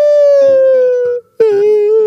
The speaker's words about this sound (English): And these kids just start howling and screaming.